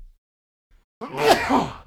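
A single loud sneeze erupts after a moment of near silence, a sharp breathy burst that trails into a voiced, wavering finish.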